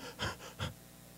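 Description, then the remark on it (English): A voice imitates heavy panting: three quick, breathy huffs in close succession, loud, with no speech. “Let me catch my breath.”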